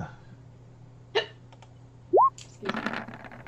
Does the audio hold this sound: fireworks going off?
no